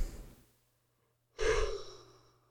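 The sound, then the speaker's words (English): A brief breath, a pause of silence, then one long, breathy yawn with a slight voiced tone that swells and slowly fades. No talking. “God, it's yawned. Was that your response?”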